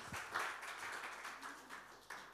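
An audience applauds, a steady wash of many hands clapping with scattered sharper claps rising out of it, fairly quiet and continuous throughout.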